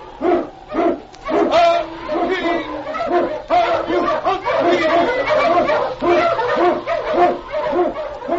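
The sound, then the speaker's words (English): A pack of Eskimo sled dogs, led by the lead dog King, barks and yelps together through storm and snow in the Yukon, loud, their overlapping barks coming in a rapid, nearly continuous chorus for several seconds. “King, the swiftest and strongest of Eskimo lead dogs, blazes the trail through storm and snow for Sergeant Preston as he meets the Challenge of the Yukon.”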